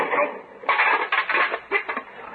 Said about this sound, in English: Oh. Bumped something. Hope I didn't hurt your car. No, you just knocked down your mailbox.